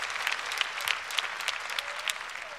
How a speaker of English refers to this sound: Clap your hands and praise God for that.